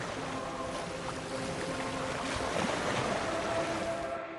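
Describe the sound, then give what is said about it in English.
Atlantic Ocean waves surge and wash steadily onto the Namib Desert coast, a dense continuous roar of surf with a rushing, windy texture, fairly loud, with no voices present. “As the Atlantic Ocean meets the oldest desert in the world, it is a truly spectacular and almost frightening work of nature.”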